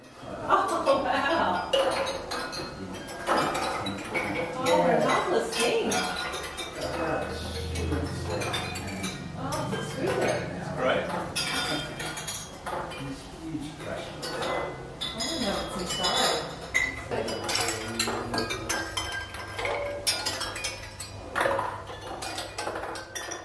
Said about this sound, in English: Sounds are generated inside the object, rolling, bumping, and random sequences of resonant metallic tones. The object is an instrument producing a musicality of uncertainty.